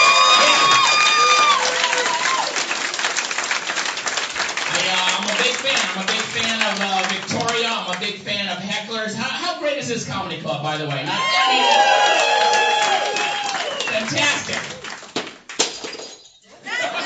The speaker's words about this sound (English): I had a really fun weekend of shows in Victoria at Heckler's. One more round of applause for all the other comics. Can we do that?